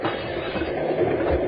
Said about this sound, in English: That one was too close to the lock, but the train was slowing down.